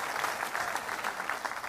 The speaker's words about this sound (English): Tell the TV audience and anybody listening that you like one nation under God. Give God a big hand clap.